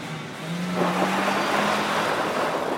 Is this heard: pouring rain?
yes